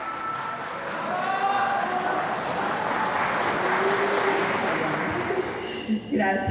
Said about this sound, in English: gets a huge cheer and makes a short speech of thanks.